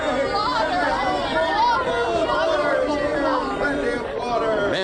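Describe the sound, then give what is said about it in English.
A crowd of people chattering at once, a steady, dense babble of overlapping voices with no single speaker standing out, holding an even, fairly loud level throughout. “Here, listen. Listen to the people.”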